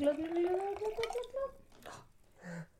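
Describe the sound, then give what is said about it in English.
Wine, a light Cabernet Sauvignon, glugs out of a bottle in quick rhythmic gulps, its pitch climbing steadily as the glass fills. It stops after about a second and a half, followed by a brief voice. “I love the gulps, the glugs.”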